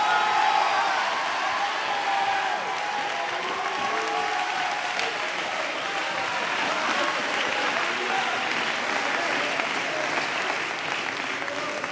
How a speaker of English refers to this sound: Are there any believers in this place today that can clap your hands and shout unto God?